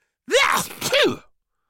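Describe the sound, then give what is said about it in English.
A person's voice imitates a cat's sneezing fit, caused by pepper poured into its food, with two quick, high-pitched sneezes in succession, fairly loud, with no talking around them. “Clarissa would pour pepper into a cat's food so it had a sneezing fit.”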